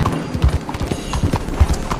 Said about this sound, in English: You got a guy riding a horse.